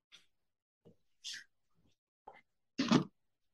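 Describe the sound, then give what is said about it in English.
A dog named Winston makes a handful of short, scattered noises, quick huffs and snorts with gaps between them, ending in a louder, fuller burst. No one speaks. “Sorry, Winston's treating the podcast like he does when I'm on the phone. All good, dog.”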